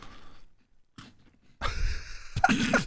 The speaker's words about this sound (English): you're really trying hard to audibly prove that you've got some Scottish shortbread